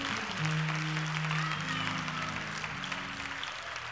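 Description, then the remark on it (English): An audience claps their hands in praise of God in a dense, continuous wash of applause, with sustained low organ-like tones holding underneath throughout. “Clap your hands and praise God for his word.”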